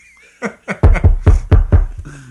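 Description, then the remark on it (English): Loud knocking on a door: about seven solid thumps in a quick, steady rhythm, heavier toward the middle, with no talking, followed by a faint low hum. “That's your health knocking on that door.”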